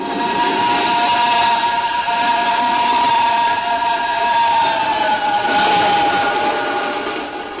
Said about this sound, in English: There for a long, breathless moment as the train roared off into the night, leaving only the singing rails to mark its passing.